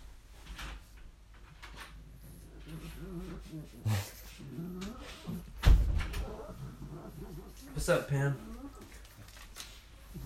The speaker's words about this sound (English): Your dog legitimately just knocked on the door. She knows how to knock on the door. She paws at it real quick.